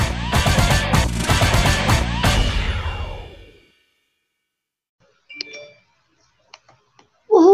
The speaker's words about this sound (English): That is the live analysis bell, and that is right.